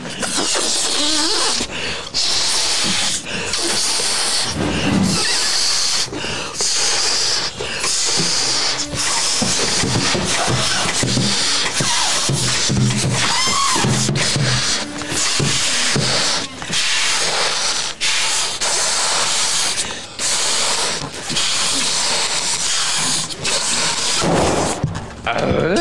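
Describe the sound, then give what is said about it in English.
Several people blow hard into tough balloons, a steady stream of breathy, hissing exhalations broken by quick gasps for air, with no talking for almost half a minute. “Bite down on that with your teeth, and then just open up your jaw a little bit when you're blowing, then clamp down on it with your teeth when you're breathing in.”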